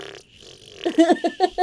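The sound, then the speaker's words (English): After a brief quiet moment, a person blows a sputtering fart imitation with their mouth, imitating a thinking putty container farting on a table: a run of four or five quick, buzzy bursts that sound fairly loud. “I really hope that everybody could hear my thinking putty container farting on my table.”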